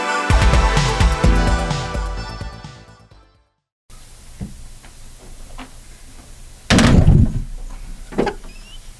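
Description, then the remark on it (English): A cheap production chair gives way under someone with a few creaks and clicks, then a loud cracking crash. Music fades out beforehand, and no one speaks. “Okay, I get a new chair, Christian. This is like those shitty production chairs.”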